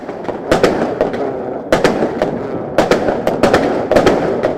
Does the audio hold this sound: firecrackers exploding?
yes